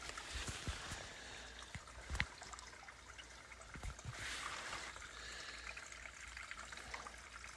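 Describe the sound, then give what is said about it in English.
Water trickles steadily over rocks along a canyon floor holding about 2 feet of water, a soft continuous babble dotted with small splashes and drips, fairly quiet, with no voices. “Right now, canyon floor has maybe 2 feet of water in it.”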